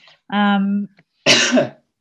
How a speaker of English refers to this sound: Sorry, just decided to cough. Couldn't hold it back.